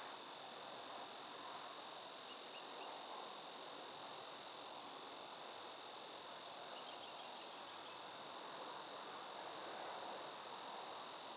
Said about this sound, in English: That's a cicada.